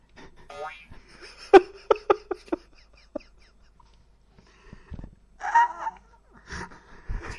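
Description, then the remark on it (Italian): A springy, rising boing like a video game character's jump, followed by a quick string of sharp bouncy hits, then breathy vocal noises and gasps. “Chi è che sta saltando con un personaggio di un videogioco, scusa?”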